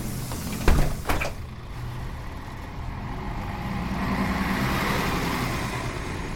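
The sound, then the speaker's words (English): A bus door thumps shut with a short pneumatic hiss, then a heavy engine rumbles steadily as the bus pulls away, the broad road noise swelling slightly with no voices. “Mister, I'm on a strict schedule. Just hang on, will ya? I'm sorry, mister. There'll be another bus in the morning.”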